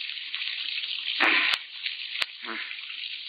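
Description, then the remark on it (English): Water gushes loudly from a faucet opened to put in a new washer, in a steady hissing rush, with a couple of sharp clicks and brief splashing surges partway through. “I thought you said the water was turned off.”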